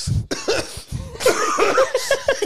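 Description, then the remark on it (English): A run of harsh coughs from someone getting over a cold, several rough bursts in quick succession with a raspy, phlegmy edge, fairly loud and with no talking over them. “I'm also getting over a cold, so if you hear me coughing a lot, excuse the cough.”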